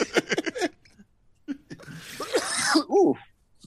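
A dry cough: a few short, harsh bursts, then a louder, breathy, rasping fit that tapers off. No one speaks.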